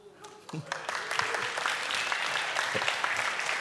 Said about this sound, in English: You should be clapping